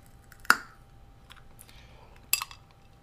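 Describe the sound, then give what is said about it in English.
Ice clinks against a glass twice, two bright, sharp taps about two seconds apart, the first ringing briefly. Quiet low hum fills the gaps, with no talking. “She has always insisted on drinking drinks with ice in them.”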